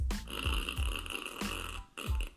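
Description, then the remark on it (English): A button toy's electronic fart sound plays, a loud, raspy, sputtering buzz lasting about two seconds with a brief dip near the end, and no one talking over it. “Mommy says toot and Daddy says fart. What does Mommy sound like? Hit the button.”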